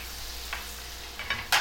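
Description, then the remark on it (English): A pancake frying in butter on a griddle gives a steady, soft sizzle, broken by a few brief scraping clicks toward the end, with no voices. “Are you just like frying up my cake? This is becoming like a, what do they call them, griddle cakes?”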